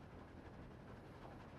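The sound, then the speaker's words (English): Train wheels click-clack along the tracks beneath a steady, low rumble of a moving railcar, continuous and fairly subdued, with no voices. “Elmo likes hearing the train wheels click-clacking on the tracks.”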